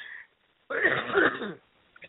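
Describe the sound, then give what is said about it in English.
A single rough, throaty cough or throat-clearing burst, fairly loud, lasting under a second after a brief pause, followed by a faint small noise. “Oh, you're coughing too.”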